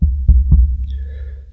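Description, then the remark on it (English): Three dull, low thumps from tapping on a microphone's X-style mount, the last two evenly spaced, each with a short boomy tail over a steady low hum. No one speaks. “And I'm going to tap this a little bit.”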